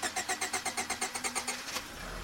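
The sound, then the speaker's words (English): A car engine, a red SUV being started, cranks repeatedly in a fast, even rhythm of about fifteen whirring pulses, straining without catching, then stops as a steady hum takes over. No voices. “Surinder, meanwhile, was having trouble starting the car.”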